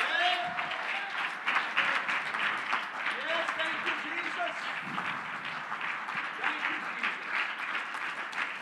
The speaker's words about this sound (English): And I'm telling you in the name of the Lord, if anybody got a second chance, oh, praise the Lord, you need to rise up and clap your hands.